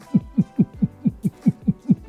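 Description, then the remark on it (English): A racing heartbeat: nine quick, deep, muffled thumps in steady rhythm, fairly loud, with no voices. “There is the running heart.”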